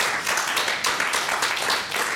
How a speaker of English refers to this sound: Congratulations. Yeah, big round of applause.